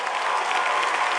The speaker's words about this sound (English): You see, the men don't agree. Whether you agree or you don't agree, clap your hands for all the ladies.